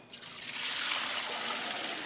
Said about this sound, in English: And when you do that, you don't have to be gentle or anything. You want the water to all go into the mixer bowl. Right. I'd say that just sometimes it can splash out. Yeah. But, be careful. A rough pour is great.